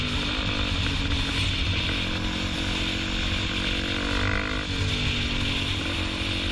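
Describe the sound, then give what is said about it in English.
A motorcycle engine drones loudly and steadily, recorded on the rider's GoPro camera, with the rumbling, slightly fluctuating roar of riding at speed and heavy wind buffeting throughout, no voices present. “Biker, yes, it's a biker with his GoPro. Filming his crimes and uploading them to the internet.”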